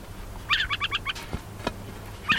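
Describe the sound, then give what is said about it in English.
A tiny brown and white adult burrowing owl, no more than 10 inches tall, rises on spindly legs and gives a warning call: a quick run of five high, raspy chirps, followed by a couple of sharp clicks and one more chirp at the end. No one speaks. “He rises up on a pair of spindly legs, sounding a warning call.”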